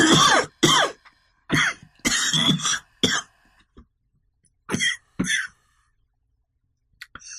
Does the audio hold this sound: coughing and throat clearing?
yes